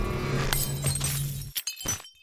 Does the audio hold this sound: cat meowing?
no